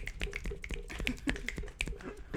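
finger snaps

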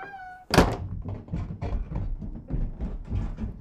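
door thudding

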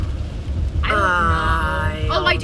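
rain with rumbling thunder

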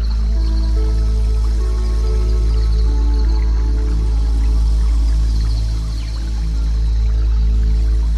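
flowing water

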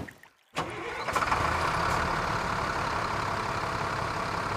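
truck engine driving

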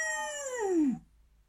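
dog howling

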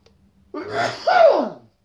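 cough

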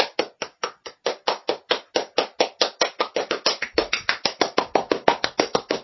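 round of applause

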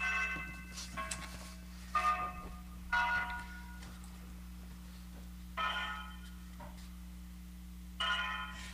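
grandfather clock chiming

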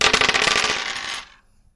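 dice being rolled

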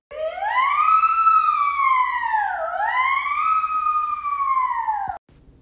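ambulance siren

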